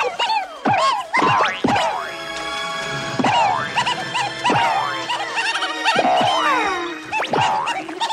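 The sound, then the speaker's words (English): A dense, nonstop jumble of sped-up Looney Tunes cartoon sound effects and squeaky chipmunk-like voices, including sped-up Daffy Duck, full of rapid high-pitched swoops, boings and sharp bursts tumbling over one another at a steady loud level. “Here's sped up Looney Tunes sounds so you can kind of hear them using that library.”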